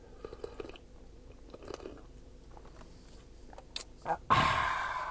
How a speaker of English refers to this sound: I want to do it right in your freaking ears, but I'm going to do the other annoying thing. I'm going to sip my coffee.